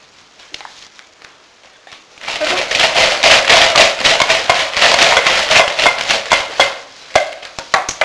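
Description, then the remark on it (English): Cloppy's hooves clop into a kitchen in a quick, steady stream of sharp knocks after a few scattered taps, loud and busy for several seconds before thinning out to a handful of final clops. “So Cloppy clopped into the kitchen.”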